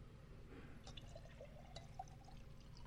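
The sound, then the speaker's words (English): Water is poured quietly into a container, a soft steady trickle with light gurgling and a few bright drip-like plinks, fairly faint and heard alone without any voices. “Go ahead and pour into me.”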